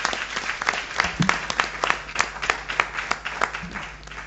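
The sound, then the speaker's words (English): An audience claps steadily for several seconds as a speaker mounts the podium at a student debate, a dense, crackling round of applause with sharp individual claps standing out, fairly loud and without any talking over it. “As he mounts the podium, show him some love with a round of applause.”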